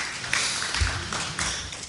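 Audience applause for a raffle ticket winner: a dense, steady wash of many hands clapping at once, with a few sharper claps standing out. It holds at an even, moderate level throughout, with no talking.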